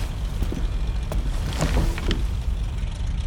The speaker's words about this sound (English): The aircraft is already vibrating, ready for takeoff.